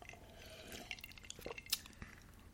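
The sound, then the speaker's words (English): Someone quietly sips a rum and Coke: soft wet slurps and small mouth clicks, with a brief glassy tick near the end. Nobody speaks. “I'll take a sip of mine.”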